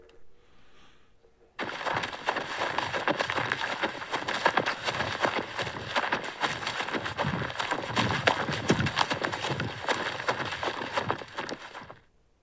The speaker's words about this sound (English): This is a horse galloping. It's a horse galloping. Horse galloping.